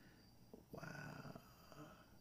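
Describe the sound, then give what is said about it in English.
A person yawns: a brief breathy intake swelling into a drawn-out, voiced groan that fades over about a second, with no other talking. “I'm not even going to take that yawn out.”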